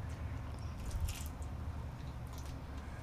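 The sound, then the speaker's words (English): Chewing of a crunchy bite of salmon tartare, with two brief crisp crunches standing out over a low, steady background rumble. The sound is fairly quiet, and no one speaks. “Crunchy, you can hear it.”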